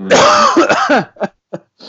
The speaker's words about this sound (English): Is that a dry cough or was there phlegm involved? Because if that's dry cough, you're dead. There's phlegm.